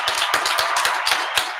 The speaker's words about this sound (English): Applause, applause.